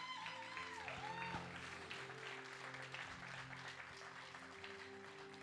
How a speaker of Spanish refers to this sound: ¿Por qué no le damos un aplauso al Señor en esta hora?